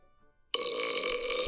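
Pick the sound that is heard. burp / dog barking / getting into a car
burp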